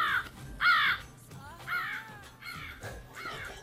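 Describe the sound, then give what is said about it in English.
A raven, called "my little Odin raven", caws repeatedly, about five harsh, croaking calls in an uneven rhythm, clear with no talking. “That's my little Odin crow. Raven. My little Odin raven.”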